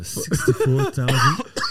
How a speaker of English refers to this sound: Don't be starting to fucking cough now, homie. Oh, fuck. Bro. Nah, I just Jesus, fuck. But mind you guys, I gave him a fucking Benadryl right when I got here.